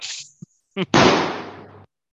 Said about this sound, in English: Gunshot for that.